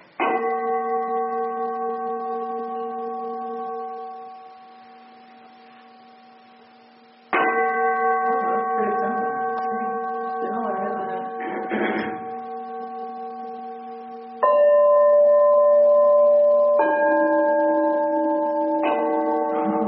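A big bell is struck with a striker several times, each loud strike ringing out with a long, steady hum of overtones that fades slowly. Some brief scraping is heard between strikes.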